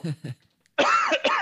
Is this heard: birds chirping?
no